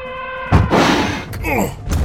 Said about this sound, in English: Colonel! What was that? Something hit us, and it was big! An elephant.